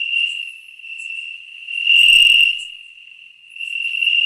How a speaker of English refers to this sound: Those are crickets. Oh. That's supposed to be crickets.